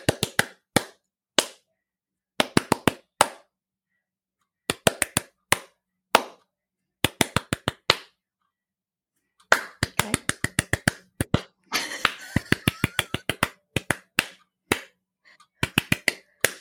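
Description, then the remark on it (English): Hand claps beat out the rhythm of the Hawaii Five-O TV theme in short bursts and groupings separated by brief pauses, with a denser flurry of claps near the end; sharp, crisp and fairly loud, no voices. “I just clapped it.”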